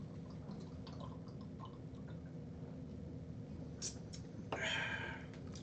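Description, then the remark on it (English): Liquid being drunk or poured in gulps, with soft wet swallowing and glugging sounds against a steady low background hiss, ending in a slightly louder burst near the end. “It was very satisfying to hear the glug, glug, glug, glug.”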